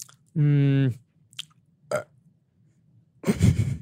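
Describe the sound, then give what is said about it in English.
A loud burp with a strong voiced, droning tone lasts about half a second, followed by a few faint mouth clicks and a rougher, gravelly burst at the end. “That's it, just a burp.”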